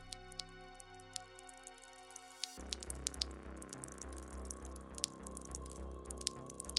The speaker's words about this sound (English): His blood was still dripping from the walls.